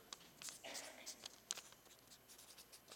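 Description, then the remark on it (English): Quiet scratching of a pen writing on a sheet of paper, a quick run of short, uneven strokes with small pauses between them, heard on its own. “Maybe it's something like this, a sheet of paper in a jar. And every time God shows up, you just write down what happened.”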